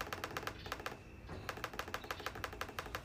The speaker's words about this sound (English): And if you're listening to the clicking, that's Morse code. We're talking to people in the fucking bunkers.